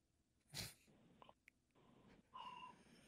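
Faint, muffled breathing of a caller from Chicago who has fallen asleep on hold comes over a phone line, with one louder snorting breath early on, then soft line noise and quiet rustles. No one speaks.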